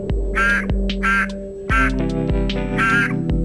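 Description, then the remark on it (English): A Cranwell's horned frog (Pac-Man frog) croaks in four loud, nasal bursts that sound much like a duck's quack, with short gaps between them and a steady low hum underneath. “For one thing, it can croak. Its call has been compared to a bass horn, but I think it sounds like a duck quacking.”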